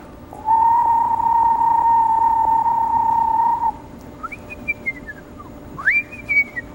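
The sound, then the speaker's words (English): Someone whistles an imitation of a screech owl's descending tremolo call, its most common call: a long, steady mid-pitched whistle, then a few shorter, higher whistles that rise and slur downward. No talking. “There are different kinds of calls, and the screech owl, you might hear, the most common call you would hear is a sort of descending tremolo.”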